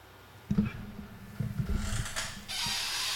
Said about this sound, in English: It's a loud ass chair.